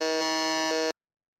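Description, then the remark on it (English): A single loud, harsh quiz buzzer sounds for just under a second as a contestant buzzes in first to answer a Pokemon trivia question, a steady harmonic-rich drone that cuts off abruptly. “you have buzzed in first.”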